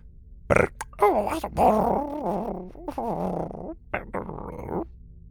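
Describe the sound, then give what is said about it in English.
Blobby, a small jelly creature, whimpers over a chocolate bar in a string of wavering, whiny bursts that rise and fall in pitch, with brief pauses between them and no talking. “One table over, Blobby sat alone and whimpered over a chocolate bar as he watched his best friend slip away.”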